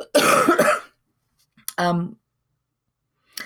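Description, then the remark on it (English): Two harsh coughs: a long breathy burst, then after a pause a shorter voiced hack like throat clearing, followed by quiet and a faint breath at the end. “Excuse me while I cough.”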